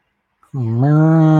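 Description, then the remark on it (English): A single loud cow moo begins abruptly and holds steady as a deep, sustained low call, rising slightly in pitch toward the end, with no talking over it. “Where the cow came out?”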